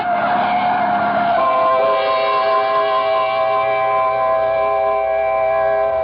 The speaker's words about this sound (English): Mildred, look out! The truck! Look out for the truck